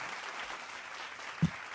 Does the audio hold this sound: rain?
no